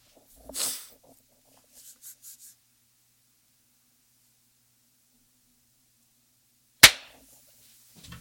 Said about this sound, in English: All right, let's time sync. Okay. What do we want to clap at? 10 seconds after. Okay.